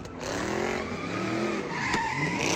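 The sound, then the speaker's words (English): Car tires screech continuously during a burnout, a loud, wavering squeal over engine roar that holds steady for a couple of seconds without letting up. “I began following cars on social media, and pretty soon found myself immersed in a whole world and subculture of burnouts, donuts, car meets, and street takeovers.”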